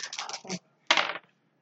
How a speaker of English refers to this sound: So it's three. Three, yeah. So you roll three of those dice. And you need one success, otherwise you're broken.